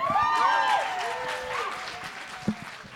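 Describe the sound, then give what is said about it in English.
An audience applauds with dense, steady clapping and a few rising whoops and whistles on top, strongest in the first second and tapering slightly toward the end. “Guys, give them one more round of applause.”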